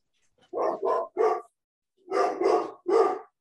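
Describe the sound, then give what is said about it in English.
A large dog barks at the mailman in two bursts of three deep, loud barks each, with a short pause between the groups and no talking. “The eternal dog versus mailman.”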